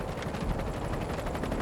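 A helicopter flying overhead roars steadily, its rotor blades beating out a rapid, even thudding over a broad rushing engine noise, loud and unbroken throughout with no voices.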